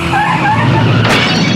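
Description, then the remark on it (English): Two cars side by side roar loudly and continuously as the lights turn green to start a street race, with squealing tires and a sudden harsh burst of noise partway through, like vehicles launching hard from a standstill. “So the cars are side by side, and he basically challenges them to a race, is what he's doing, right?”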